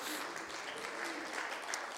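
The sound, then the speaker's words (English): A crowd applauds steadily, many hands clapping at once in a dense, continuous patter that holds at an even level throughout. “Somebody ought to clap your hands and say, I believe it.”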